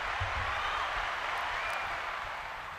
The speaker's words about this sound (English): I mean, I was waiting for the applause to stop.